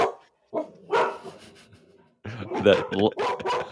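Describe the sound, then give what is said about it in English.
A dog barks several times in short, irregular bursts, moderately loud, with brief pauses between outbursts and a busier cluster of barks toward the end. “Love the dog making their presence known.”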